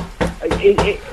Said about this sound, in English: Nobody's answering the door. Please don't knock on the door. We're only letting people see the house by appointment.